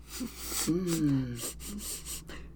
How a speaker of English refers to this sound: What are you doing? Yes, what am I doing? I don't know. Why are you sniffing stuff? Why are you sniffing things?